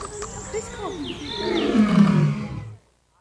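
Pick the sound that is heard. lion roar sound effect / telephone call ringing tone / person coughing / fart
lion roar sound effect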